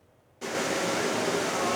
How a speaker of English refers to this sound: Shattered windows and a rush of water. Remnants of a chaotic Friday evening firefight on the downtown east side.